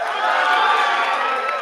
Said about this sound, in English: So let's say goodbye to our friends, everybody. Wave, make some noise. Give them a huge round of applause. That's right. Make some noise for them. Say goodbye.